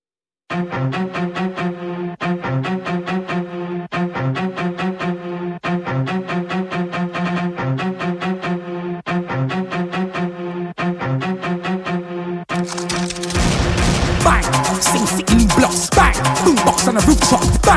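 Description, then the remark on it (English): A song plays loud, a bright repeating riff pulsing in a steady looped pattern, then the full beat crashes in near the end, denser and heavier. No voices. “I am playing … featuring ….”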